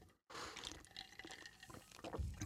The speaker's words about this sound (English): I had to take a sip of tea there to keep that from coming back up my... Anyway, I'm chewing on ice.